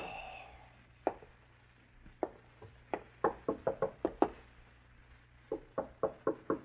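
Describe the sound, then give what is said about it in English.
Knocking on an apartment's front door, a few spaced knocks first, then a quick insistent series of raps, pausing before another burst of four, clear and otherwise quiet. “Your first impulse is to answer the door, isn't it, Ted?”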